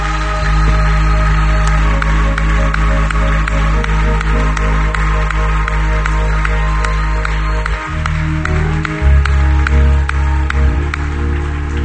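A church audience gives the Lord a hand clap of praise, applauding steadily for about twelve seconds, the clapping blended under loud, sustained organ or keyboard chords that shift partway through.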